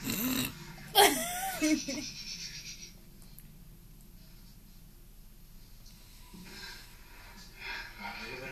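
Heavy, raspy breathing, with a few loud huffs at the start, then a quiet stretch before softer breaths return near the end.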